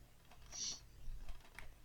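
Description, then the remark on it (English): A sealed black box with no opening gets a quick shake, a loose flat object inside, seemingly a DVD, clattering against its walls in a few short, clicky knocks. It's fairly quiet, and nobody speaks. “It sounds like there's a DVD in there.”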